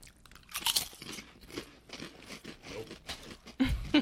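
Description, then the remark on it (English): Crisp, loud crunching of Lay's potato chips being bitten and chewed, a rapid series of sharp crackly bursts with brief pauses between them and no talking. “Honestly, your bullshit Lays? You're fucking it up. It also tastes like farts and smells like it.”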